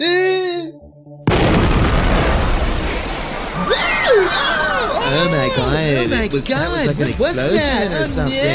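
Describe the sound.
A sudden, loud explosion of a C4 charge blowing a door booms in after a brief moment of speech, its noisy rumble lingering while many voices shout and scream over it.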